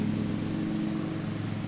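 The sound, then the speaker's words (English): A neighbor's lawn mower engine runs outside in a steady, low-pitched drone with a buzzing harmonic hum, holding an even loudness throughout with no voices over it. “I was waiting because I knew of all the days we were recording outside that like someday he would be out mowing his lawn.”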